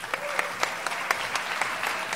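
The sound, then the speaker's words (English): Steady audience applause at an evening Democracy Now! event supporting KXCI in Tucson, a dense wash of many hands clapping with sharper individual claps popping out at irregular moments, holding an even, moderately loud level throughout with no voices. “and now please hold your applause.”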